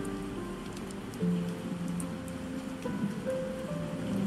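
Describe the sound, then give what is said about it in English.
Steady rain falls outside in cold weather, hissing in the background, a soft continuous wash of drops with a low humming tone running underneath; no one speaks. “You know, it's really cold here and rainy, you know, so it's raining outside.”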